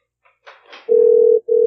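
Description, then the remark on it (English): A loud, steady electronic ringback tone of an outgoing phone call to a man who does not answer begins after a few soft clicks and rustles, breaks off for a split second, then resumes. “Get one more ring.”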